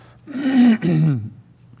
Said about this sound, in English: Excuse me for a moment here. I'll clear my throat.